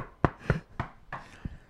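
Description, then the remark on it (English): Four or five sharp wooden knocks on a door, a Saved by the Bell-style knock, irregularly spaced with a short pause before the last one, moderately loud and with no talking. “Saved by the Bell knock.”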